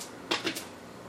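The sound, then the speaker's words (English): Three dice being rolled in a game: three quick, light clattering clicks in rapid succession, then quiet. The clicks are short and crisp, with no voices. “So I rolled 14.”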